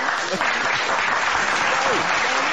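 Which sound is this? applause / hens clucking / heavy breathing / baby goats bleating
applause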